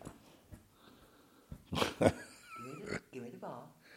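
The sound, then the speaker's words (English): A wound-up American Pit Bull and Greyhound mix dog on a couch whimpers and growls, rough throaty bursts giving way to a high, wavering whine over about two seconds, with faint human voices in the background. “See, now when you come over to him, he calms down.”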